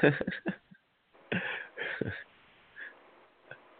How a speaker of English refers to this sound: Yeah, it sounds like I can hear him breathing, but well, at least y'all can hear me.